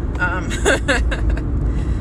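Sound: car driving in traffic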